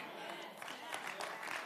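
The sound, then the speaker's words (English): An audience claps during a preacher's sermon in a steady, dense patter of many hands, with no distinct beat, fairly soft overall and mixed with a murmur of voices throughout. “You're not, some of you are clapping, but you're not getting it.”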